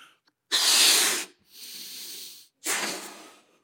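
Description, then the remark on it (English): A balloon being blown up: three long, forceful breathy puffs of airy hiss, the first loudest, with brief pauses between them and no talking. “You are impressed that I blew up a balloon.”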